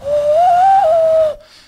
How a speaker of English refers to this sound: Like I can turn my elbow like the wrong way, and I can do this hand whistle.